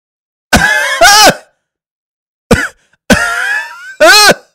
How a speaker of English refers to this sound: You sound like you're coughing.